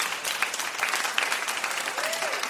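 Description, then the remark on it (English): Steady quiz show audience applause after a game, a dense crackle of many hands clapping at an even, moderate loudness throughout, with no clear voices rising above it. “I just applaud both of you for being part of that.”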